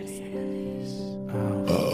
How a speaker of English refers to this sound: I'm five that a burp will get me more than a well-crafted joke.